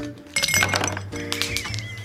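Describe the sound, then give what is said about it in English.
Ice cubes clatter and clink into a tall glass for a cocktail in a quick, busy burst of bright tinkling, fairly loud, with no one speaking. “fill a tall glass with ice, the way children fill our lives with so much joy.”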